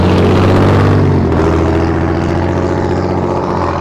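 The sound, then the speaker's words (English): A car with a glasspack muffler rumbles past, its loud, throaty exhaust droning steadily with a deep burbling tone that shifts pitch partway through. No one speaks. “I'm glad that guy had his glass packs on, because I wouldn't have known he's coming.”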